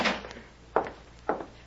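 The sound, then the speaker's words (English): The back door to a stage, really a room where children gather, opens with a few short clunks and rattles, three quick knocks of wood and latch spaced about half a second apart, moderately loud, with no voices. “Here's the back door to the stage.”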